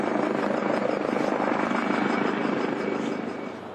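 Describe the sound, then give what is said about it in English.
A helicopter thunders overhead, called out after a very cold young child was reported, its rotor chop a steady rapid pulsing over a broad roar that stays loud throughout and eases slightly at the end. No one speaks. “So the reason the helicopters come is we've reported a young child, very cold.”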